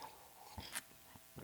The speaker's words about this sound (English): So let's have a sip of coffee. Here's to you.